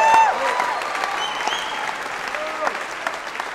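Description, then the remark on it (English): A church audience applauding God loudly, a dense, steady wash of many hands clapping with scattered voices and a few whoops mixed in, sustained throughout. “Come on, give him a big clap right now.”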